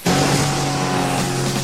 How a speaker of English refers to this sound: If there's one thing Dad loved more than Serenity, it was a two-stroke engine on full throttle.